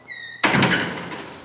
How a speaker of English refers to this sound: Jack dropped the ball, startled by the door to the gym flying open.